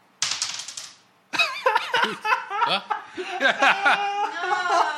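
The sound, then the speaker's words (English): A quick rattling clatter of a six-sided die (1d6), rolled across a hard table for hit points in a game with a DM, lasts under a second before people break into loud, overlapping laughter and excited voices. “Lucky dice, lucky dice. Oh, let's choose this one. It's already on a 6.”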